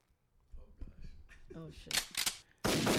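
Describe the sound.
Gunshots ring out in two sharp bursts, then a loud, sustained blast of fire takes over at the end, harsh, with indistinct voices murmuring underneath.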